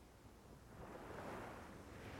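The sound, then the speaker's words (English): Gentle waves lap at a shore, a soft, steady wash of water that swells slightly midway and then settles, heard alone at a low level with a faint breath of wind. “Charlotte wanders to the shore and sits, watching the water.”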